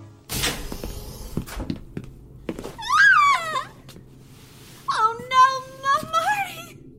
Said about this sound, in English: In a hurry to find Marty, Walter and Kitty dash upstairs and knock on the old man's door, using the master key that Overseer Mackenzie gave Walter.